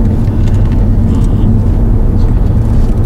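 Steady engine and road rumble from inside a moving Volvo estate car, a deep continuous drone with a faint hum that stays even and unbroken throughout.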